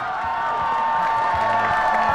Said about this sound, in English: This was Father Berrigan. The room erupted with cheering and flurries of motion as students rushed to protect Berrigan from the FBI agents they were sure had infiltrated the event and would whisk Father Berrigan away.